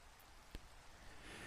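Steady rain hisses softly across a broad wash of noise, with one sharp tap like a heavier drop landing partway through. No voices are heard.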